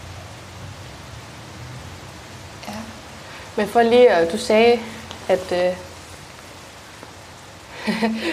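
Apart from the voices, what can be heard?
rain falling outdoors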